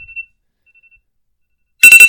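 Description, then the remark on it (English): A phone alarm ringtone bursts in loudly near the end, a bright, harmonically rich electronic melody pulsing rapidly, after mostly near-silence with only a faint, thin high tone earlier. “That was not a business-related alarm.”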